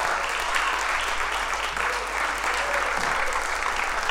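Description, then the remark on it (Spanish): An audience at a church service applauds for Jesus Christ, a dense wash of many hands clapping at once, fairly loud and sustained throughout with no pause. “Alguien puede dar un aplauso a Jesucristo en esta hora.”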